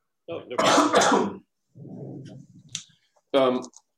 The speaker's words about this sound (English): So that was the motivation for developing the Ultratonic, and I'll talk more about that after I clear my throat.